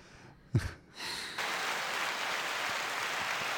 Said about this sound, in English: Where's applause? There it is. So C is applause, A is sad trombone, and B is energetic music transition.